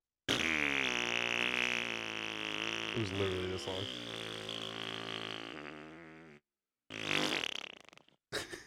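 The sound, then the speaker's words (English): A person vocally imitates a long, drawn-out fart, a buzzing, wavering raspberry lasting several seconds, followed by a brief spoken remark and a short burst of laughter. “That's exactly what it sounded like.”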